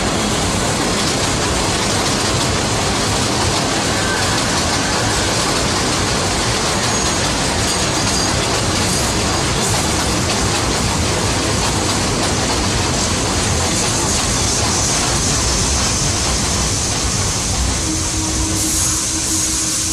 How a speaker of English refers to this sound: Express train. The next stop is New Lots Avenue.